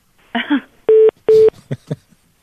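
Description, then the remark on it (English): Two loud telephone keypad tones beep in quick succession as a number is dialed to call someone, each a steady electronic pulse, with brief muffled vocal sounds just before and after them. “That'll get her on the phone.”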